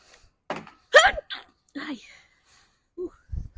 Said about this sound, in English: I gotta sneeze.